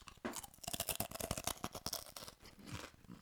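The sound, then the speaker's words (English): Someone crunches on a knobbly clump of corn snack, a rapid run of sharp, dry, brittle cracks packed tightly together, fairly loud at first and then tapering into softer chewing. No one speaks. “There are going to be a lot of crunching sounds.”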